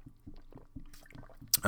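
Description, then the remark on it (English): Quiet sips of water with a few soft gulping swallows in a steady rhythm, then a brief breathy exhale at the end; no one speaks. “So, let me go ahead and grab a sip of water, because y'all be having me go off, you know.”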